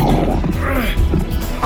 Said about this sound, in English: Beast! Stop! Get off, lion! I won't be your lunch today!